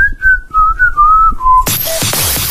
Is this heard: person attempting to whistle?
yes